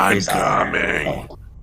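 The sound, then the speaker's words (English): A man's voice lets out a rough, guttural roar imitating a barbarian, a single strained growling shout lasting over a second before cutting off abruptly. “You guys hear what sounds like a roar of a barbarian, or at least the descendant of one.”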